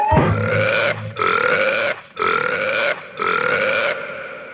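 Four long, loud belches in a row, each about a second, with short gaps between them, deep with a croaking, voiced tone, belched as the campaign slogan "Belch for Betty".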